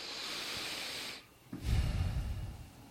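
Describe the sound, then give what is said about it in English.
Heavy breathing right on the microphone: a long airy exhale, a brief pause, then a louder, rougher breath with low rumbling gusts. No one speaks. “I was just breathing.”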